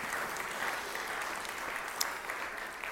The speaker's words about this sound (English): So let's give a round of applause for our children, over $10,000.